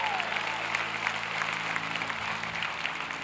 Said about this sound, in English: Let's give one more round of applause to our worship team.